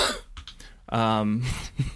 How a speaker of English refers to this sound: That's a weird cough. Yeah, well, it sounded like some sort of tin apparatus weird. Opening or something.